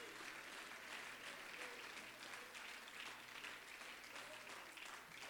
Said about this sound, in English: Would you clap your hands and praise him tonight?